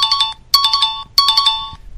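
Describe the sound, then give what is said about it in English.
A quiz ring-in bell tone sounds three times, each burst a bright, high electronic trill of rapid pulses, loud and evenly spaced with short gaps and no voices. “I ring it in, it's a cat.”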